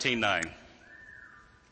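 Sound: whistling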